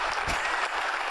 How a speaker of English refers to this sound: He always gets a big round of applause.